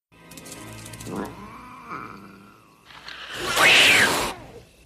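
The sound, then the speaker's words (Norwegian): A cat meows a few times, drawn-out, wavering cries that build into a loud, strained caterwaul near the end. Clear, with no talking. “Det noe katter.”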